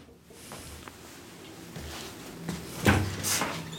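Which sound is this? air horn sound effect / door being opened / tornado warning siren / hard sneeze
door being opened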